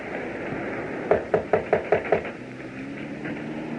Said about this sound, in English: Is there a bell? No. I'll knock again.